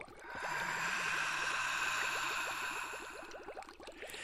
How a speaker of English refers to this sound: It gets so much worse. Listen to the bubbles. The bubbles?